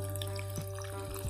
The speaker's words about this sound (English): I gotta pour me out some of this Red Bull, the yellow edition. Tropical.